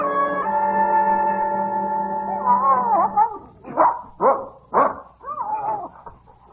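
A dog lets out a long, drawn-out howl, then breaks into four or five quick, loud barks, with no one talking.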